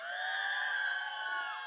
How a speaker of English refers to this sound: So before I get into our message tonight, if I could hear a big yell on the count of three from anybody who was at Echo Camp just a couple weeks ago. 1, 2, 3.